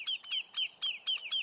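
A Lesser Yellowlegs calls in a quick series of about six sharp, whistled notes, each slightly descending, repeated at a steady rhythm. The calls are loud, with no voices.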